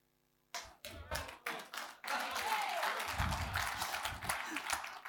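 A church audience breaks into applause, starting with a few scattered claps that quickly swell into sustained, dense clapping from many hands, with some voices mixed in.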